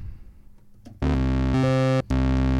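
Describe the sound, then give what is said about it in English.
A loud, sustained instrument chord played on a preset with reverb added, its washy, echoing tail swelling in after a quiet start, shifting pitch partway through, briefly cutting out, then ringing on. No one speaks. “And we'll throw some reverb on it.”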